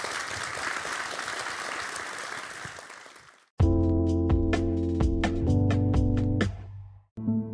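Steady audience applause for James Roger Deakins, a dense crackle of many hands clapping, lasts about three and a half seconds before cutting off abruptly as loud, rhythmic music with a strong beat begins.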